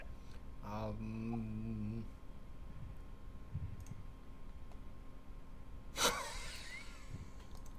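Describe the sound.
A woman, from behind her hand, imitates a badger running out with a buzzy, rapidly pulsing growl lasting over a second, followed after a pause by a short, sharp snorting hiss.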